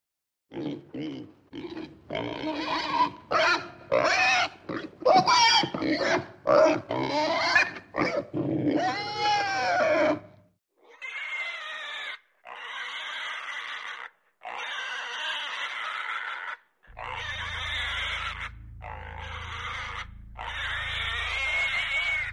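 Pigs grunt and oink in a rapid string of short, choppy bursts, then shift to longer, higher squealing calls separated by brief pauses, with a low rumble underneath near the end.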